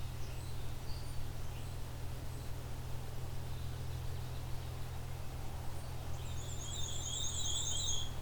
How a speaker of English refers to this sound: Okay, there's a fast version of the black and white warbler song.